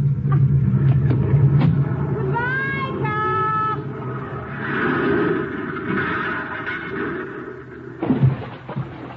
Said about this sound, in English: I place the car in first gear. And then I pull the hand throttle out a little, turn the wheel, and get out.